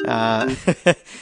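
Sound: mobile phone ringing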